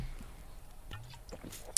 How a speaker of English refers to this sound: And yes, I'm going to sip on a bit of this beverage for me right now.